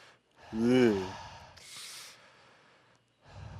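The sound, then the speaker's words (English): A person imitates eerie, heavy breathing heard during sleep paralysis: a voiced, wavering gasp, then a hissing breathy exhale, and another breath starting at the end. “And then I just fucking remember the breathing I heard too.”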